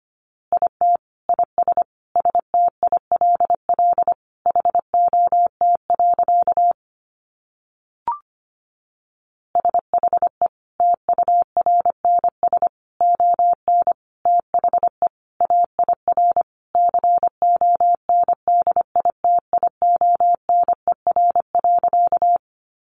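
A single steady mid-pitched tone keyed on and off in quick dots and dashes, Morse code sending easy phrases at about 25 words per minute, with one brief pause partway through and no voices.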